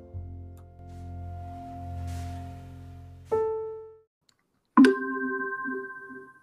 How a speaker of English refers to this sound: The bells have chimed in Hunter's house, and that means it's time for us to start. For those listeners who have been hearing the bells, that is a great time for us to start asking questions